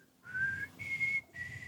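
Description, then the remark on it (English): A person whistles a short signal tune of three short, steady notes, the second slightly higher than the first, with brief gaps between them and some breathy air noise underneath. “I can't whistle at all, so don't worry. Let me try again.”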